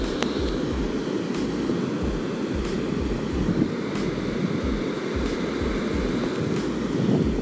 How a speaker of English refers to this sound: Folks, I'm at the beach right now. You probably heard the waves in the background.